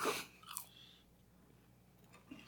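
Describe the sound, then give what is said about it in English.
Chewing of A&W takeout Beyond Meat burger combos with fries: a couple of crisp, crunchy bites near the start, then quieter mouth sounds and a soft final crunch, with no talking. “Now, to explain all the chewing noises, I went and got A&W because it's takeout night.”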